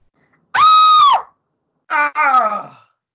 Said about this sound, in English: Off stage, a woman screams, a man cries out in agony.